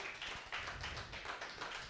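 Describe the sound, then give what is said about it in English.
An audience applauding a performer, a dense, steady patter of many hands clapping together, fairly quiet, with no voices over it. “Give him one more round of applause.”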